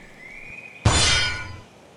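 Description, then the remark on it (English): A thin whistling tone glides in as an arrow flies through the air, then it strikes armor and bounces off with a single loud metallic clang that rings and fades over about a second. No voices. “The arrow hits your armor with a loud clang and bounces off.”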